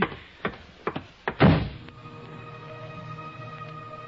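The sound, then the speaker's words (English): A door is handled with a few sharp clicks and knocks, then shuts with a loud slam, leaving a faint low hum and ringing tone afterward. No one speaks. “I can find the door.”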